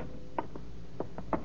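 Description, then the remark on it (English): The door of a flat being opened as someone lets themselves in: a handful of short, dull mechanical clicks and clunks from the latch and handle, coming in two loose groups over a low steady hum, with no voices. “You open the door.”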